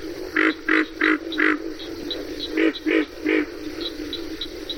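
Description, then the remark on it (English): Pig frog grunting calls in the Okefenokee swamp, a series of four rough, pig-like grunts followed by three more after a brief pause, evenly paced against a steady background hiss. “Well, the most prominent frog, I believe, in Okefenokee, the one that everyone hears, you can hear it day and night, is the pig frog, which grunts like a pig.”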